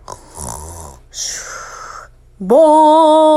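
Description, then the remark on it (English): Two rough, snore-like breaths, then a voice imitating a giant gong being banged to wake a hibernating bear: a loud, sustained humming bong that swoops up in pitch at the start and rings steadily to the end. “Let's bang this giant gong.”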